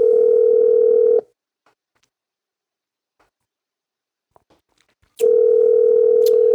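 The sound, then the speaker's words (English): An outgoing phone call's ringback tone: a loud, steady electronic purr sounds once, stops for about four seconds of near silence, then starts again. No one speaks. “So I'm going to make a phone call here just live.”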